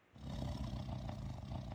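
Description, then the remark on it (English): A tiger's soft, low, rumbling growl starts abruptly and holds steady for over a second and a half, deep and throaty, with a gritty texture and no voices present. “The growl was much softer this time.”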